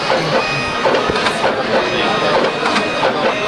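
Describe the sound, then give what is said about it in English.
A combined inkjet and braille embosser prints braille and ink print at the same time on single sheets, a dense mechanical whir with repeated rapid tapping and clacking, running continuously without talk. “Boy, it sure is working.”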